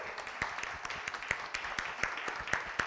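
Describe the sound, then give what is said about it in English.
An audience claps together for God after a Bible reading, a dense patter of many hands with sharper, louder claps standing out at a fairly steady pace, with no voices over it. “Come on and give God a hand clap.”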